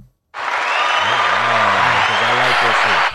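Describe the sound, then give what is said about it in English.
Loud, dense applause from a crowd starts after a brief silence and holds steady for about three seconds, with voices calling out underneath before it cuts off. “Can I get an applause?”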